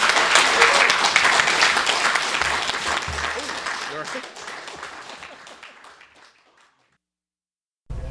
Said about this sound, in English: Warm round of applause for Daniel Pyne.